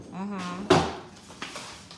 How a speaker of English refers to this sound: What the? All the cabinet doors swing open.